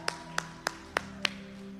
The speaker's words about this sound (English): Can we praise him? Come on now, you've been praising and putting hand clap emojis for the last year and a half. Come on now, can I see some energetic hand clap for Jesus? Come on. Oh, I'm clapping better than you are.